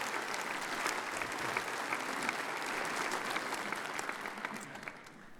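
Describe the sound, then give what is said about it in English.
A church audience claps steadily and warmly during a worship service, a dense wash of many hands sustained throughout at moderate volume, easing slightly toward the end, with no voices standing out. “Go in peace and give these folks a round of applause as we encourage them in their mission.”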